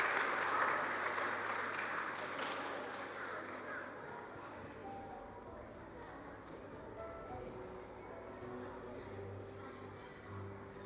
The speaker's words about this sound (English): But I just want to say how proud I am of everybody. You guys were amazing, all of you. So big round of applause to all of you, no matter what the results.